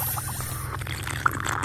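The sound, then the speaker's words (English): Water being carbonated: a steady low hum runs underneath continuous bubbling, fizzing water noise, with one brief sharp click near the end. No one speaks. “So if you could carbonate this. Carbonating water.”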